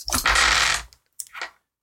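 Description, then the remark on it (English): A loud burst of dice clattering and rolling for about a second, then a shorter second rattle after a brief pause. The sound is dense, rapid and clicky, with no voices. “So many dice. There's still more rolling.”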